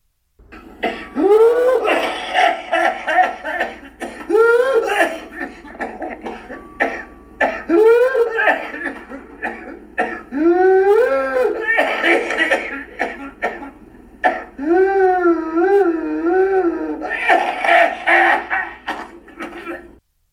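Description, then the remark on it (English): Repeated fits of pertussis whooping cough: rapid bursts of harsh coughing broken by high, strained gasping whoops on each inhale, cycling several times with no talking. “The cough he had was classic for pertussis. It's not a barking cough. It's a whoop.”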